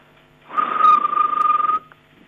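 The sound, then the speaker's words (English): A woman vocally imitates a cricket's chirp: one loud, raspy trill with a rapid fluttering pulse, held for just over a second and heard alone, with no talking. “It's actually, you know, when the crickets rub their legs together, my dad used to hate that sound, and I used to love antagonising him when I was younger.”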